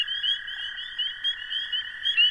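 A steady chorus of frogs and toads croaking and trilling together in a pond, a continuous high-pitched buzzing drone with small rhythmic pulses running through it, and no voices.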